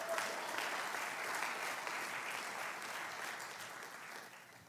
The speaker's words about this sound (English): Go ahead, give Jesus Christ a hand clap.